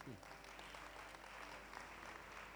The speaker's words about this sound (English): Thank you so much for clapping. Can we all clap our hands?